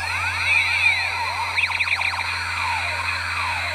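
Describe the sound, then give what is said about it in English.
An electronic toy gun that lights up and fires nothing makes a sound effect: a rapid series of high, sweeping laser-like zaps that warble up and down, with a denser burst midway, over a steady low electrical hum. “I've got a gun. Listen to this.”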